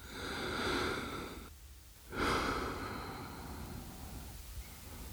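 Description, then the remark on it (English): Slow, steady breathing through the nose with the mouth hanging open: a long airy inhale, a brief pause, then another drawn-out breath that trails off softly. No talking. “And just kind of stay in your nose.”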